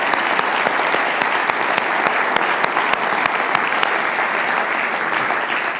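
Sustained, loud applause from a church audience for its pastors, a dense wash of many hands clapping steadily for several seconds with crisp individual claps standing out, and no speech.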